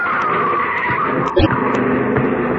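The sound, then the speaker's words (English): A car skids with a sustained, loud tire squeal, ending in a sharp jolt partway through, then the squeal and engine noise carry on briefly. “Look out, Governor. Mind that car.”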